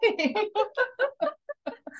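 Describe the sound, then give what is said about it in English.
About eight chickens clucking outside a house in a quick, steady run of about ten short, throaty bursts, clear, with nobody talking over them. “I have like 8 outside my house right now. Chickens all over.”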